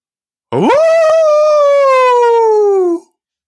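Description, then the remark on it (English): A human voice howls like a wolf: one long, loud, unbroken howl that swoops up quickly, then slowly slides downward in pitch for about two and a half seconds, with no talking. “As a matter of fact, I think I feel a howl coming on.”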